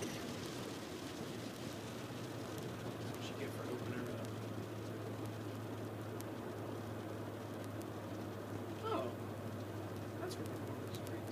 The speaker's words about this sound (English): The rain's back.